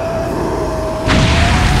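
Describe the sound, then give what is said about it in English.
A video game fire attack explosion, a Charmer fire attack: a steady rumbling roar with a thin sustained tone, then halfway through a sudden loud whooshing burst that swells and keeps roaring to the end. “That's a Charmer fire attack.”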